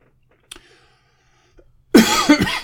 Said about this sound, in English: Oh, cough for effect there and all.